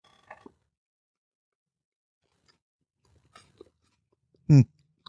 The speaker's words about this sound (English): I can't taste the onion. The onion just gives it crunch, but it's not disgusting like you're adding more onion to your sandwich. It's not like you're eating a chunky peanut butter.